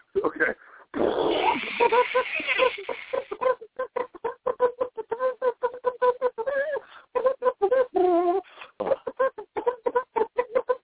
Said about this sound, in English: Let me blow my nose right quick.